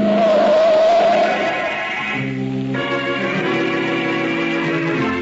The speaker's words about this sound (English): Hey, wait, look at that car come. Boy, is he traveling. Why, that crazy fool.